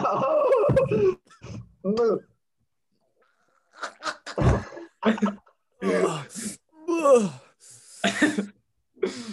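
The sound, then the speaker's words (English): Several people groan and moan in disgust after drinking shots of Echo Falls wine, mixed with coughing, gasping and throat-clearing noises, in loud uneven bursts with a short quiet pause partway through. “Well, for you audio listeners, if you either heard us having our drinks or you're hearing this bit, they did not go down well.”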